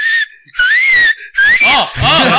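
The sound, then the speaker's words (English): A whistle is blown in several loud, shrill blasts in quick succession, the tone sliding upward and ending in a warbling, wavering trill. “Where's my whistle?”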